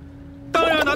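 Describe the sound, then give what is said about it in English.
A low steady hum gives way halfway through to a sudden, loud burst of bubbles from an aquarium holding a fish, Ip Man, picked up by a microphone underwater in the aquarium: a dense, ringing gurgle that continues to the end. “The microphone sounds odd being underwater like that. Yeah, a little bit. We can hear. Is it the bubbles?”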